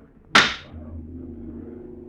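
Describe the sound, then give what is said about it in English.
In a Crime Classics radio drama set in Rome in 44 BC, the President of the Senate strikes a gavel once for silence with a sharp, loud crack, followed by the low, steady murmur of lawmakers that continues underneath. “The drone of lawmakers before the President of the Senate raps the gavel for silence.”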